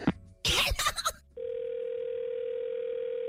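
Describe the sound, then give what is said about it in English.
A brief burst of clicks and line noise, like a call cutting off, followed by a steady, continuous telephone dial tone that hums on without a break. “I believe we were disconnected.”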